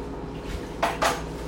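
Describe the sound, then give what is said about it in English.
Two quick clinks of dishes knocking together as they are washed, over a steady low background hum, with no voices present. “Why am I always doing the dishes?”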